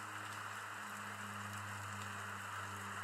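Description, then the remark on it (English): Steady, soft rain falls continuously with a hissing patter and no distinct drops standing out, accompanied by a faint low electrical hum. Nobody speaks. “Don't you guys love the sound of rain?”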